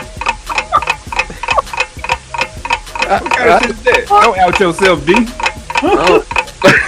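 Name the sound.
ticking clock countdown timer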